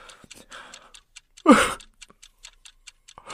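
clock ticking

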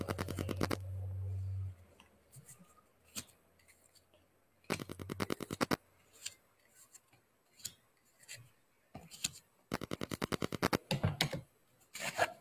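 shuffling tarot cards

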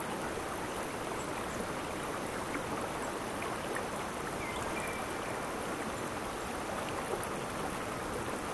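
flowing river stream

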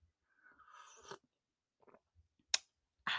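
sipping a drink

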